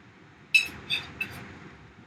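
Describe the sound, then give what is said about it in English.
Beer glasses clink together in a toast, three bright, ringing taps spaced about half a second apart, fairly loud over a low, steady rumble. “Cheers.”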